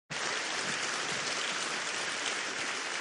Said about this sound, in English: Notice the hesitancy. Do I clap or not clap? Maybe I'll clap.